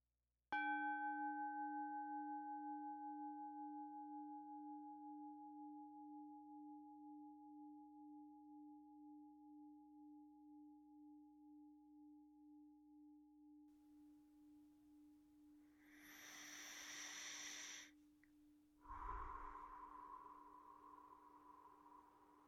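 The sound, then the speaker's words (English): A meditation bell is struck once and rings out in a long, pure, wavering hum that fades slowly over about fifteen seconds. Soft rustling and shuffling noises follow near the end. “Now let's invite the bell and begin.”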